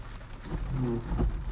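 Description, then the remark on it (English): Steady rain patters against a car with a low rumbling hum underneath, heard from inside the car with the windshield wipers going, moderately loud and continuous with no talking. “Man, listen to that rain. You hear that?”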